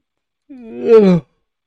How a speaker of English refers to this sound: I just got to fucking yawn in your faces, everybody. I can't stop it. I'm serious. I can't stop yawning.